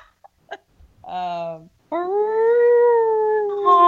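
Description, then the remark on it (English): A person imitates a beluga whale: a few quick clicks, then two drawn-out, high, wavering whistle-like wails. The second wail is longer and steadier, fairly loud with no talking. “Can you please make a beluga whale sound?”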